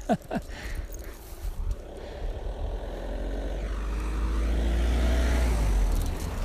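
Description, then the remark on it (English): A car drives past outdoors on a country road, its engine rumble growing steadily louder and deeper as it approaches and peaks near the end, with wind noise and no talking. “So I'm actually on a country road. Come here. My dog has decided it wants to work right in the middle of the road where all the traffic is.”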